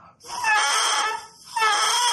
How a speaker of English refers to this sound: This is the bagpipe chanter, and removed from the bagpipe chanter with a double reed, same kind of reed in there. And this reed, when I blow into it, it crows. This is what's called the crow.